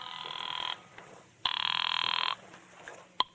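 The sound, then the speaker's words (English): A telephone bell rings twice in loud bursts with a short pause between them, followed by a faint click. No one speaks. “On my way out of there, I made 2 phone calls.”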